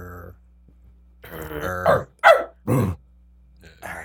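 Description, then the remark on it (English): A man's voice imitates a dog, a low rumbling growl building into a few short, loud barks, with a brief vocal sound at the very start. “Can we bark for … one time? I don't think I have the energy. Give him a little growl.”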